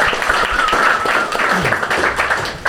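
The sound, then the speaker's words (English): A live studio audience applauding: dense, steady clapping made of many overlapping sharp claps, loud and sustained throughout, with a faint tonal whoop or cheer mixed into the crowd noise. “Give yourself a round of applause, first of all.”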